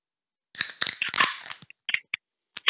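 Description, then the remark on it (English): Several cans of American Pale Ale beer cracked open almost at once on a count of three: a dense, loud burst of sharp metallic pops and fizzing hiss lasting about a second, then a few brief, separate clicks trailing after, with no talking. “Let me get my beer to crack.”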